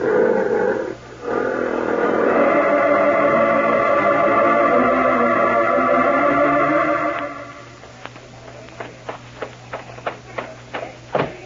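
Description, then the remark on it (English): Circus lions, loose from their cages, roar in a loud, sustained, growling blast for several seconds, then it fades into a run of sharp, evenly spaced cracks of gunshots as a man shoots the locks off the animal cages, with no voices. “Our lions are loose. He's shooting the locks off the animal cages.”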